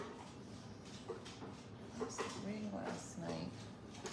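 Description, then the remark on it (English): Dogs drink water in the morning, lapping noisily in loud, wet, irregular slurps and splashes over a steady background hiss, with a few faint voiced sounds mixed in. “Super loud drinking of the dogs.”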